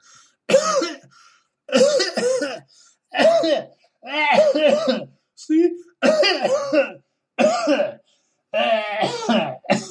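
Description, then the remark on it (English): A loud coughing fit in the middle of an interview: about eight harsh, raspy coughs in rapid bursts with short gaps between them, and a brief spoken word in the middle. “A cough attack in the middle of an interview.”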